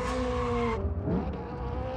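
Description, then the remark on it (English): A loud, sustained tire squeal rides over the heavy engine of the monster truck Grave Digger for under a second, then gives way to a rough engine rumble that continues to the end. “The monster truck?”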